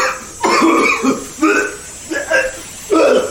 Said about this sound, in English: He got a face full of it. Sure did. Cough it out.